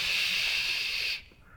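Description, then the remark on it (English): A voice imitates a whipped cream can spraying: one steady, bright hiss held for just over a second, then cut off abruptly into near silence. “This guy had a huge whipped cream and it just kept going and going, and then it fell off the table onto the floor.”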